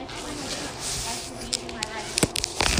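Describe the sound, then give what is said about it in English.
Several short, sharp hissing spritzes of alcohol from a spray bottle during car polishing, a couple spaced apart and then a quick cluster near the end, over a murmuring background with faint voices. “You can spray the alcohol.”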